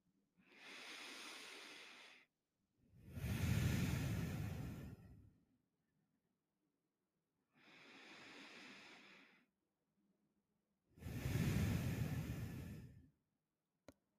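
Slow, deep breaths drawn in and let out twice, each inhale a soft airy hiss and each exhale a fuller, heavier whoosh, unhurried with quiet pauses between.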